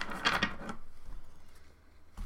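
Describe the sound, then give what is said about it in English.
Shuffling of a deck of tarot cards for a tarot reading: a quick burst of papery riffling and flapping, then a softer stretch of light rustling, with a second brief flutter at the very end. “Just tell me when you want me to stop shuffling.”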